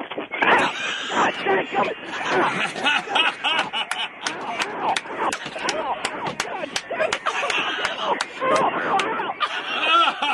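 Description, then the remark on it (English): A crowd cheers wildly, many voices shouting and laughing together in a loud, continuous din, punctuated by sharp bursts of noise throughout. “Listen to the crowd going wild.”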